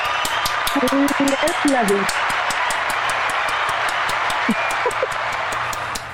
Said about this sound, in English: Ladies and gentlemen, please join us in giving a warm round of applause